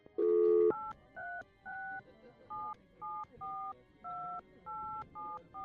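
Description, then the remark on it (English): A string of touch-tone beeps as a fake 555 phone number is dialed, about ten short dual-tone presses in a steady rhythm, clear, following a brief louder tone at the start. “That's a fake phone number, like the ones they use on movies and TV and whatnot. He's right. Let's try it anyway.”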